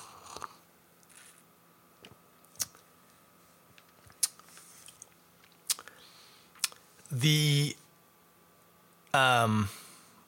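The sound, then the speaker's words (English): Quiet sipping and swallowing of a very hazy, opaque orange IPA beer, with a few soft wet mouth clicks scattered across several seconds, followed by two short, appreciative voiced sighs near the end. “I'm going to have a sip because I do like.”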